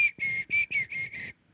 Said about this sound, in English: So do you know how to whistle? My whistle is very shrill and okay. Bright. Do it.